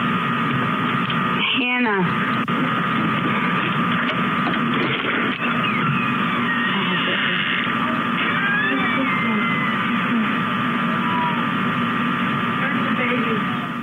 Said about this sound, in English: And you can actually hear the baby cooing in the background.